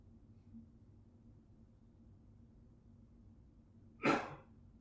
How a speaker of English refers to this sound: How was that cough?